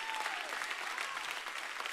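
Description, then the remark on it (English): An audience claps hands in a dense, sustained burst of applause, urged to clap and remember Jesus Christ, with a faint sliding tone briefly audible beneath the clapping. “Somebody ought to clap your hands and remember Jesus Christ.”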